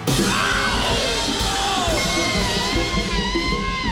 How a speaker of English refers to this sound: Suddenly, there came a loud yell of pain.